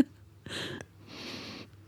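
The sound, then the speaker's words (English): A person gently sniffs twice, soft and breathy, close to the microphone, trying to smell something on the mic; the second sniff is longer and more drawn out than the first, with a short pause between and no talking. “I'm trying to gently sniff.”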